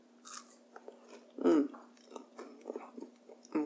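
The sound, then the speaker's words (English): Wet chewing of a big, roughly 4-inch oatmeal chocolate chip cookie, soft inside with slightly crispy oats, with irregular mouth clicks and one louder bite-like crunch, no talking over it. “I'm chewing, sorry.”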